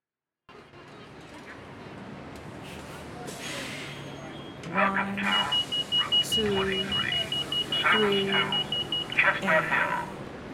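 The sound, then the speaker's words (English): A muffled automated voice of a SEPTA city bus makes a stop announcement inside the rumbling bus, while a steady high-pitched electronic beeping tone sounds alongside it for several seconds. “With a guest appearance by whoever that is, who is the voice of SEPTA on the buses.”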